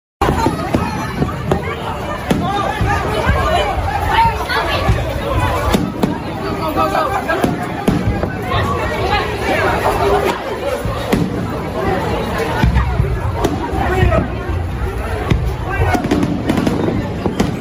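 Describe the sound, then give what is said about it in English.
Fireworks in Orlando burst and crackle in rapid, irregular succession over a large crowd murmuring and calling out, the loud pops and booms continuing steadily throughout. “People went to Orlando to enjoy the fireworks, and instead somebody said, there's a shooter, and people ran away.”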